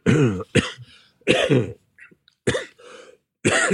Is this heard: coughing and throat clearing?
yes